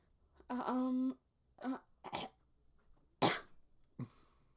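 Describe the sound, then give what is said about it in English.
A long, droning burp, followed by a few short throaty vocal noises and one sharp, breathy cough-like burst. “What, you burped?”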